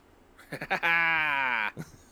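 A goat bleats: a few short, stuttering bleats lead into one long, loud, wavering cry that holds for about a second before breaking off, followed by a brief final grunt.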